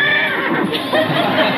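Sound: horse neighing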